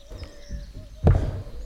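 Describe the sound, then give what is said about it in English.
Footsteps on the ceiling above: a few soft, low thuds, then one heavier dull thump near the end, with a faint steady hum underneath and no talking. “There's a lot of, like, stepping on the ceiling above me.”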